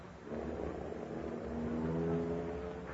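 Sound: car driving away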